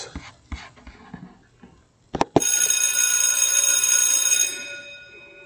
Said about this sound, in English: My friends, now, when you hear the bell, you know it's time for our chat.